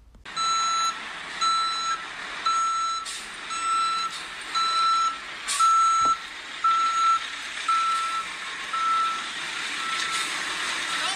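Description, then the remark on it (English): A large beer truck drives into an arena and into the ring, its backup alarm beeping steadily, about once per second, over a constant wash of engine and background noise, with a brief sharp knock partway through. “you're going to see when the truck drives into the arena, right into the ring”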